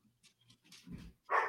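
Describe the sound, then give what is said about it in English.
A dog gives a low, rumbling growl followed by a single sharp, loud bark, with brief quieter whines and noises before it. No one speaks. “Oh, my God, that dog had a quick turnaround.”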